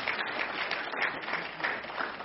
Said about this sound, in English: So you can give him a round of applause.